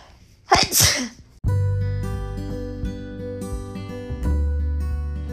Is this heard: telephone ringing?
no